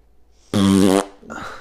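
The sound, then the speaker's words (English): A loud, buzzy fart rips out for about half a second, clear, then trails off into a softer, muffled sputter. “Yeah, I just like farting when you say stuff.”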